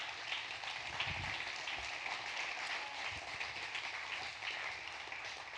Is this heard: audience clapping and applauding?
yes